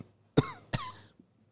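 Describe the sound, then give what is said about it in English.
Two sharp coughs in quick succession, each a loud burst with a raspy tail, followed by quiet. No one speaks. “Doesn't know where the cough button is.”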